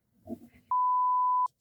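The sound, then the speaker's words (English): A single loud, steady electronic beep at one pitch lasts under a second, cutting in abruptly after a brief murmur of voices, like a landline phone sounding off. “Thank you, phone.”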